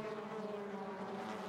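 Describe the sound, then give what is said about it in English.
A dense, steady roar of high-revving 2-litre TCR touring race car engines at the start of a race, with Hyundais at the front of the field, drones continuously, with a strong harmonic whine holding at a constant pitch throughout the short stretch. “And the screaming 2 litre engines are now unleashed.”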